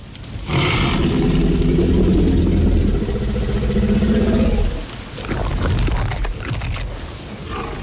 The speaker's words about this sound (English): The menacing growl of a hungry T-Rex ushered in the dark side of gene tinkering in the film Jurassic Park.